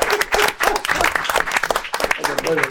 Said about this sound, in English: Yeah, we can clap it up.